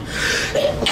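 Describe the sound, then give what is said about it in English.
A single sharp sneeze bursts out, a loud noisy blast of breath with a brief rising intake before it, and no talking around it. “Bless you.”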